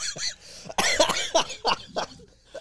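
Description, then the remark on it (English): A loud fit of coughing: several sharp, hacking bursts come in quick succession over a couple of seconds, with short breathy gaps and a bit of throat clearing between them. “Dude, it's the middle of a bouncy cough.”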